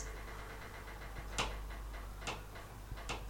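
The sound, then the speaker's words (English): Three sharp, irregular creaks and ticks from the heating pipes in a flat crack out over a steady low hum, spaced about a second apart, with no one speaking. “My God, the flat's creaking. It's the fucking heating, I don't know what's coming on.”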